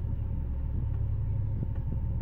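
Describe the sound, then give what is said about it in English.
A car engine rumbles steadily with the handbrake on as the driver eases off the clutch and onto the accelerator, a low, continuous drone with a couple of faint knocks near the end and no voices. “Ease off the clutch and onto the accelerator.”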